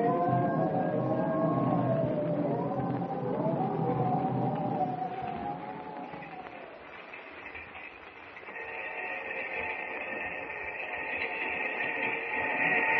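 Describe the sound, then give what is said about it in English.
A train carrying passengers rumbles steadily along the rails, a continuous loud low roar with squealing, wavering metallic tones over it, shifting to a higher steady whine partway through. No one speaks. “I haven't been able to sleep a wink since we got on the train.”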